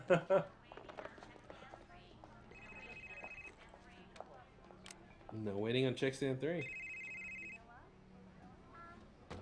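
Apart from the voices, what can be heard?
old-fashioned telephone bell ringing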